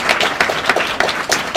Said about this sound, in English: And thank you guys for showing up, and I can't believe that it's standing room only. Oof, so good. Clap it up for you guys. Thank you guys.